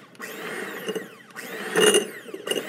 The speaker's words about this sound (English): But or a blender that doesn't go on Mach 5. We're just pulsing it out just to get it nice and mixed together.